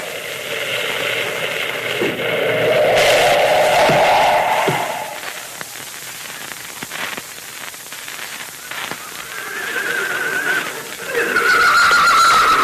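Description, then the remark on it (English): A horse lets out a loud, drawn-out whinny, followed by a stretch of scattered hoof clops over a steady hissing background, then another high neigh near the end, as riders halt at the base of a mountain where Moccasin's horse, Rainbow, has stopped. No one speaks. “Moccasin's horse, Rainbow, stopped at this spot.”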